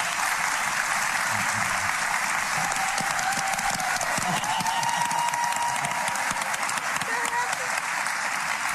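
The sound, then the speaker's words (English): Sustained applause from a large studio audience on a television talk show, dense steady clapping at a constant loud level for several seconds with a faint tone drifting underneath, as the adoptive parents of twins are welcomed onto the show. “I'm going to stand up and clap for myself.”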